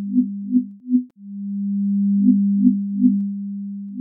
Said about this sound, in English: The hexagonal antenna is made of fiberglass, making it very lightweight. And when the helicopter is flying there, it transmits an electromagnetic signal.